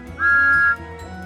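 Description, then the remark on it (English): Thomas the steam engine blows his whistle in triumph, one loud, steady, high note for about half a second, then cuts off, leaving a low rumbling background with no voices. “He thanked Yong Bao and the diesel engine and blew his whistle in triumph.”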